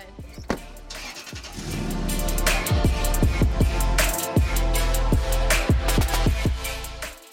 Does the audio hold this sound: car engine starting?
yes